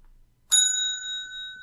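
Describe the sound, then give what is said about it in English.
A bicycle bell rings once, sharp, its bright metallic tone lingering and slowly fading over the next second with no voices around it. “That's two bells.”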